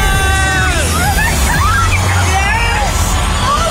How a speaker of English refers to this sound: Oh, we've got a scream. We've got a scream. It's only taken 4 weeks. Oh, I can't believe this. Amazing.